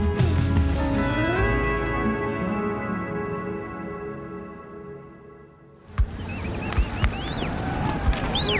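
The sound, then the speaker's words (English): A steady droning tone gives way to the rumbling thunder of a buffalo herd in South Dakota and riders' horses galloping, with scattered thuds and high whistling calls rising over the commotion. “We got cows coming out! Come on, cows!”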